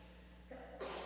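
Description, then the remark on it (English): A single quick sneeze: a short voiced intake that breaks into a sharp, breathy burst of noise, fairly soft against a steady low hum. “Bless you.”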